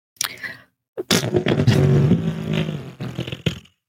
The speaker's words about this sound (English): Just fart noise. I leave it in.